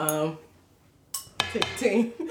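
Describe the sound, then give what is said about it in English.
A brief voice is followed by a pause, then several sharp, bright clinks of glasses touching in a toast, ringing briefly with some clattering in between. “You're here. You're here. Ting, ting.”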